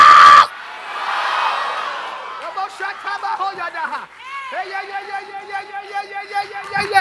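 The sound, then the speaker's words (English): A large crowd erupts in loud, sustained screaming and shouting, a dense roar of many voices with individual yells and whoops rising above it, continuing in energetic waves after a brief burst of noise. “Somebody scream, you got to go!”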